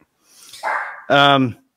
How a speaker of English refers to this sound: Dog's barking. That's okay. That coming through all right on your end?